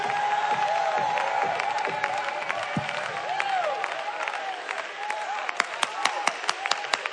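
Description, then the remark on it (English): A large crowd claps and shouts unto God together in a dense, roaring wash of applause and voices during preaching, with sharp, evenly spaced claps standing out near the end. “Clap your hands and shout unto God.”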